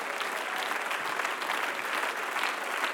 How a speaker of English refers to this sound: One more time, why don't we clap our hands and thank God.